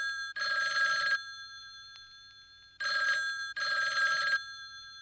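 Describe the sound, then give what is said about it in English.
A telephone bell rings loudly at the start of a song: one long ring, a pause, then a quick double ring, with a bright metallic trill and nobody speaking. “And I think that starting with the phone like is very, very purposeful.”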